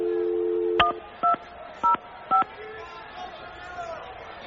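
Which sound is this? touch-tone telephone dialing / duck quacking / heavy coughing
touch-tone telephone dialing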